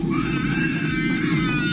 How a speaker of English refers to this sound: There is a screaming baby. Yeah. And it's not just for takeoff, it's the whole flight. Yes. Right, the whole flight.